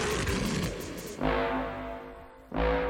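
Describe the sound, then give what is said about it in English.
Two loud, rough roars imitating a lion, given as roars for England's Lions after England won a World Cup penalty shootout, one about a second in, the other near the end, each swelling then fading, over a steady noisy background. “Roar like a lion.”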